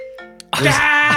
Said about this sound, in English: Hold on. Is that your phone ringing through your computer?